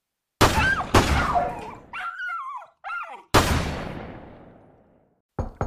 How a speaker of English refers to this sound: I can't respond until these dogs stop barking.